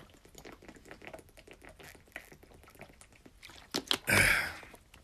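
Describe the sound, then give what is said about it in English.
Someone drinks water: soft clicks and small mouth sounds, then a couple of sharp sips followed by a loud, hissing gulp near the end before it quiets again. “Let me drink a little water real fast.”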